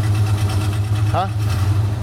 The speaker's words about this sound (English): That is such a sweet little truck. So picture this. It's probably like a 1950 truck.